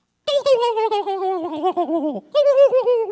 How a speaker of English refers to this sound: It was turkeys. There were turkeys all over the place.